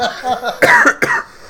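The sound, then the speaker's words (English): Two sharp coughs from people burst out in quick succession, following a moment of quieter, murmured vocal sound, then fade back to near quiet. “We're not laughing, we're just coughing.”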